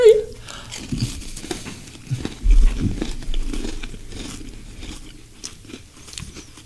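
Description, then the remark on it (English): Crunchy biting followed by steady chewing of Oreo cookies, with brittle cracks and moist mouth sounds repeating irregularly for several seconds, moderately loud, with no talking. “Let's make sure you get your regular Oreo down.”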